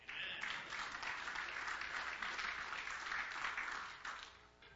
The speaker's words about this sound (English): Amen. Go ahead, give a hand clap to the Lord.